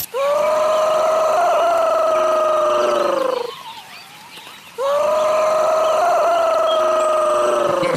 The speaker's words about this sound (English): Brolga is incorrect. It is the bush turkey. The bush turkey.